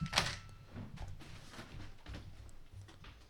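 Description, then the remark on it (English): A few dull knocks on a door, quiet, spaced irregularly after a sharper opening rap, with no voices. “Were you knocking on the door?”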